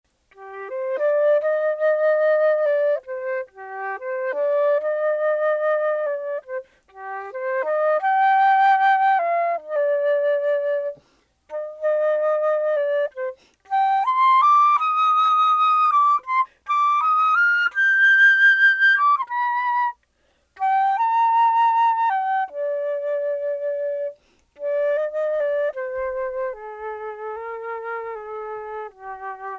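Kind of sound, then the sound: sound effect, flute playing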